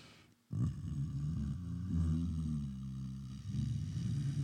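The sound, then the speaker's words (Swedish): A deep, guttural death-metal style vocal growl, introduced as the growling of the bear, starts abruptly after a brief silence. It rumbles on loudly and continuously for about four seconds, rough and low-pitched, with no music behind it. “Ladies and gentlemen, the growling of the bear.”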